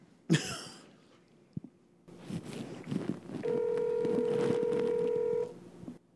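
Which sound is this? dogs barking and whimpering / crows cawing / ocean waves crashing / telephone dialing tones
telephone dialing tones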